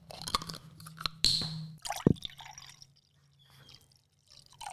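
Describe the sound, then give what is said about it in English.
Blue Monster energy drink, not refrigerated, being poured from a bottle into glasses, with splashing, gurgling and a bright clink in the first couple of seconds, then quieter trickles fading out. “So let's give it a little pour into some glasses and we'll give it a bit of a taste.”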